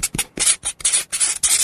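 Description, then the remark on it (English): A permanent marker scratches across paper writing out a list in about seven quick, rasping strokes, each a hissy, high-pitched scrape with brief pauses between, fairly loud and with no voices. “So it is a writing sound effect.”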